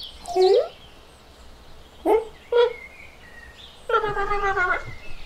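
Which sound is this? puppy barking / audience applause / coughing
puppy barking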